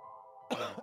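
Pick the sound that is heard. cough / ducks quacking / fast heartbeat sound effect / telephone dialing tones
cough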